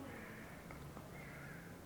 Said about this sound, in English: The sound of the crow's cawing, sound of the car, not that is exactly Buddha manifesting moment by moment.